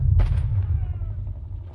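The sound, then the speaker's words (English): A loud explosion as a tank is blown to pieces, a sharp crack followed by a heavy, sustained low rumble that rolls on and slowly fades over the next second or so. “And then we're there, the explosion of sound is immense. We've just watched a tank get blown to smithereens.”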